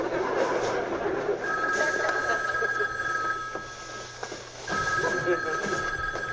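A telephone rings in two long, steady electronic bursts separated by a short pause, fairly loud, over a constant murmur of background noise.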